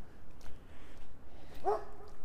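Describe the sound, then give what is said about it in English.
A Doberman barks a short, sharp bark through the trees, with a bit of faint yipping before it over low outdoor background noise. “We're going to get a dog visit. You can even hear them yelling at me through the trees.”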